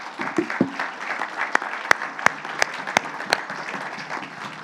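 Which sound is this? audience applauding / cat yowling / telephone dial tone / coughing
audience applauding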